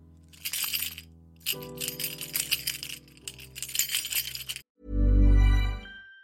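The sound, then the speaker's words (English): A bunch of keys is jingled inside an office in a few bright, metallic bursts of clinking over about four seconds, followed by a short low, loud thud-like swell at the end. “I'm going to jingle my keys, and then you're going to hear an advert, an algorithmically inserted advert.”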